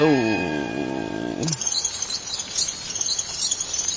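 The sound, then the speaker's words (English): Rapid, high-pitched bat squeaks chitter repeatedly over a faint hiss for a few seconds, following a brief, lower harmonic tone at the start. “Oh. Bat.”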